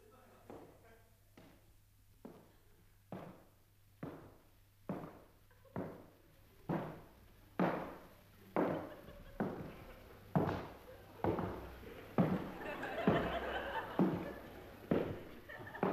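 Steady, evenly paced footsteps of someone walking up past a microphone near the floor and off thud along one after another, growing louder as they pass, with a muffled, busier clatter near the end as a door slams somewhere in the distance.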